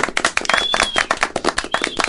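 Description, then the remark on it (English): A pressed clapping sound effect: a burst of applause from a small group, rapid overlapping claps forming a steady, bright crackle with no voices, lasting about two seconds. “Why did I have to press a clapping sound when you said you were going to make your own sound effects?”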